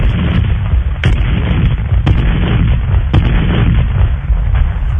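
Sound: cannon fire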